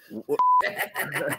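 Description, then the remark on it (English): A single short, steady high-pitched censor bleep cuts in between bursts of a man's speech, loud and clean, lasting about a quarter second before talking resumes. “And if you want us to have a better production values, if you want us to have a beep button that actually goes on when we're actually swearing and not afterwards, listen the fuck up.”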